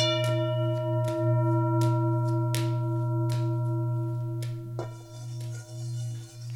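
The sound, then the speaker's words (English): A singing bowl rings with a steady, sustained hum and shimmering overtones, holding one resonant drone throughout, with faint soft clicks at intervals. It sounds fairly loud, with no talking. “I'm going to play the singing bowl.”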